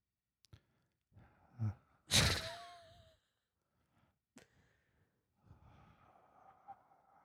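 Heavy breaths puffing into a microphone, one long loud exhale standing out among softer inhales and snorting breaths, with quiet gaps between and no talking.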